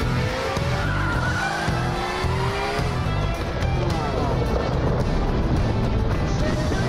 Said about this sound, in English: Looks like we're going to a cityscape that's upside down. Oh, now we're right side up. Ivory Tower presents. Hey, here's your chance. Bunch of cars racing through downtown somewhere.